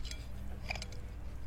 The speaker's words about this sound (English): who is washing their dishes? Sounds like Kirsten's eating.